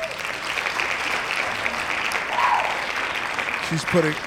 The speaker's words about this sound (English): Hand claps to her.